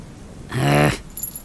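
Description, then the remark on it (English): A voice does a brief, rumbling imitation of a cat purring, lasting about half a second, loud and buzzy, followed by faint high tinkling. “Purring? Hell no!”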